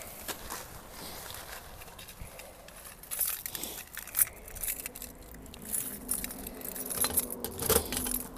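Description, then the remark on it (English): Keys jingle and clink in irregular bursts, metallic rattles with sharp high-pitched transients, followed by clunks of a small metal mailbox door being unlocked with a key and opened while checking the mail; no one speaks. “You have to go to a mailbox and get a key and open it.”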